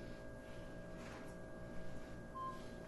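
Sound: mobile phone beeping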